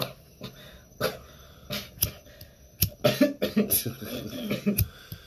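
A man coughs repeatedly and harshly: a few scattered hacks, then a rapid run of rough, raspy coughs that grow denser toward the end.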